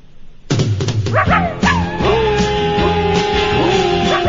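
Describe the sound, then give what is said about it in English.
A puppy yips and barks in quick high-pitched bursts, several short calls with rising and falling whines, fairly loud against a steady background hum. “He asked for something puppy, right?”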